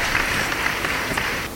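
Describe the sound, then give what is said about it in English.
A crowd's applause, a dense steady wash of many hands clapping at once, holding at an even loudness before tapering off at the very end. “So, round of applause.”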